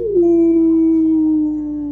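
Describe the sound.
A voice imitates a farm dog howling on the moors in fog: one long, steady, mournful wail that slides slightly downward in pitch and holds for about two seconds, loud, with no other sounds.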